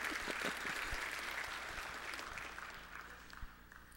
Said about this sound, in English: Yeah, you can clap.